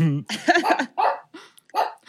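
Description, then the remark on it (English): A female dog named Dizzy barks several times in quick, uneven bursts, loud, with short pauses between the barks. “Is that why she's barking? She's so mad.”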